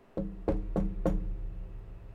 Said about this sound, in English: I'm knocking on wood.